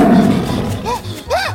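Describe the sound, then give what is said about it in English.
Lions roar in a short burst: a low rumbling growl opens, then two deep, arching roars rise and fall in pitch, the second louder and fuller than the first. “What? Real lions?”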